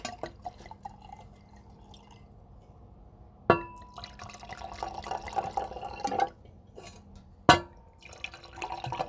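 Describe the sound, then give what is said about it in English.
Sweet wine is poured into glasses for a wine tasting: it trickles and splashes in two short pours, with a couple of sharp clinks of glass against glass. The sound is fairly quiet, with no talking. “So I guess we'll go ahead and get these poured. Let's pour.”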